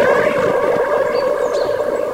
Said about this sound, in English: Sorry, I only got some of that because of the echo.